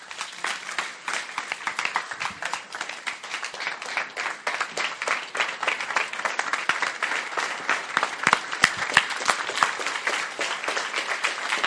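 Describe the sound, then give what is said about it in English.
Sustained applause from a large crowd clapping after a sermon, dense overlapping claps filling the whole stretch at a steady, lively level without letting up. “Look, the way I've preached and the way you are clapping, I can't compare the two.”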